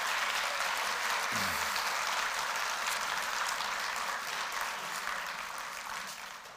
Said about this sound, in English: Well, let's give them one more round of applause as they're heading out.